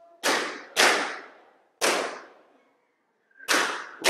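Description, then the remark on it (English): Four loud, sharp balloon pops during a balloon-popping game burst out at uneven intervals, two in quick succession, then a gap, then another after a longer pause, each cracking sharply and trailing off quickly. “Whoever has an unpopped balloon, why are you popping your balloon?”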